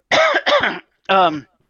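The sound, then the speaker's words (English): Three loud coughs from one person: two in quick succession, a short pause, then a third, each a harsh, throaty burst with no talking around them. “First of all, apologize for the coughing.”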